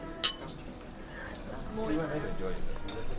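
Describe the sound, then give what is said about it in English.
A single bright clink of glasses rings out near the start of a toast in a restaurant, followed by a low murmur of voices and faint clatter. “Thanks for inviting me. Cheers. Cheers.”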